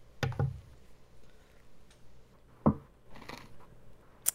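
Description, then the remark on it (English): Someone loudly chewing ice: a handful of sharp, irregular crunches separated by quiet pauses, with a burst early on and another near the end, and no voices. “I was chewing ice so loudly, I didn't even hear you say my name.”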